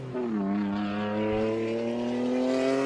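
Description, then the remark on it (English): A Nissan Skyline GT-R R32 engine drones loudly and steadily as the car drives past, its pitch dipping briefly then climbing smoothly as it accelerates, with no voices. “That was a really cool car. So... What was Acura? It? No. So that's a Nissan Skyline.”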